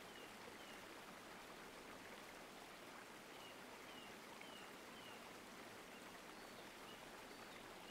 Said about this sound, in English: You notice the sound of running water. There is a river just a few feet away from you.